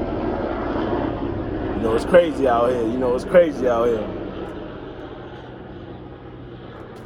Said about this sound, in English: We're gonna wait for this helicopter to leave, and we're gonna get a moment of silence.